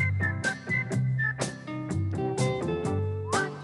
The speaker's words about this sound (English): Guys, whistle along.